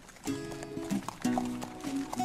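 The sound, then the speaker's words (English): Hooves of a thoroughbred horse clop in a quick, uneven rhythm, several sharp knocks each second, with a steady tonal drone running underneath. “He's just starting to get wired up now, but we'll try and get him back up to his paddock in case he get hurt.”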